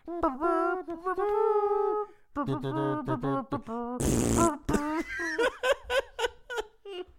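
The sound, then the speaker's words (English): A voice producing buzzy, wavering hums that sound like fart noises, with a loud raspy blast in the middle followed by choppy, giggly vocal bursts. “It just sounds like you're humming out of your ass. It sounds like fart hums.”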